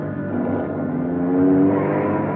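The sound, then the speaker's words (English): A car engine roars during a chase, a loud, steady droning whine that swells as it accelerates, then holds at high revs. No voices are heard. “Close in as tight as you can, Ben. Down to the floor now.”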